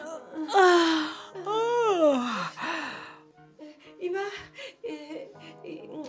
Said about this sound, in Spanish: Hattie bostezó y abrió los ojos bizqueando.